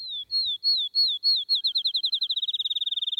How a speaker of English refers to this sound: Have you heard the song of the field sparrow?